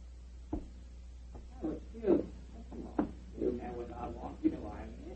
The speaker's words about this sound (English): The signal. There goes the front door. Somebody's come in.